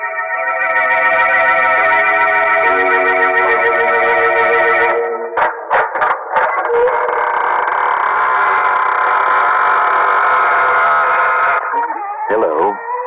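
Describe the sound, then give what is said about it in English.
The squeaking door of the Inner Sanctum Mystery radio program: a long, loud squeaking door swings open, its strained, raspy groan holding steady for seconds, breaking into a few sharp stutters, then dragging on before warbling to a stop. “Your host, welcoming you through the squeaking door.”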